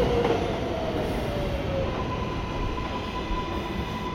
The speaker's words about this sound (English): Hey, we caught the train. Whoa, here it comes.